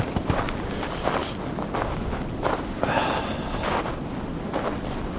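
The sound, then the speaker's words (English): Footsteps crunching through deep snow on a mild day in a steady walking rhythm, each step a broad, gritty crunch, with a constant rush of wind noise over the microphone throughout. “You hear my feet crunching in the snow?”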